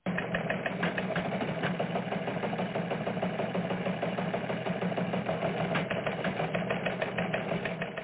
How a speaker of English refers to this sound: So that's how you do a news show. It's not that hard. You get a theme, you get a teletype sound, and away you go.